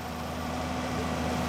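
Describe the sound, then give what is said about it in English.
A big direct drill approaches with lights flashing and a big flag on board, its engine droning steadily, a deep rumbling hum with a constant tonal whine running through it, with no voices over it. “So I wanted to see this big direct drill in action, and it's just coming towards us now.”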